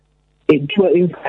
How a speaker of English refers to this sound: go and stand back wherever you were standing, because your phone's breaking up, and I want to, unless it's Kellogg's censoring this call, which they have the power to do. Can you hear me okay?